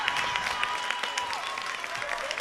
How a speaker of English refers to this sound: They're clapping alongside him.